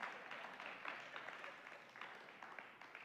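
A crowd applauds steadily for about three seconds, a dense wash of many hands clapping at once, moderately loud and fairly close, with no voices over it.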